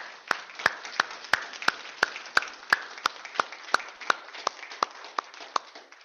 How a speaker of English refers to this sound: That's an awesome thing. We can clap for that. That's awesome.